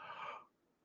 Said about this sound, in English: I got to yawn real quick. Sorry.